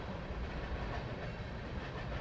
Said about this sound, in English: Can hear the train in this. Well, let me turn up microphone number 4. Yeah. You can hear it perfectly. Listen to how soothing that is.